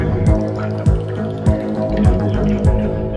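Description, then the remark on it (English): Bubbling, gurgling stream water beside a memorial bench, with a steady background wash and regular plopping bubbles roughly every half second, fairly loud, with no voices. “bubbling stream where there's a memorial bench.”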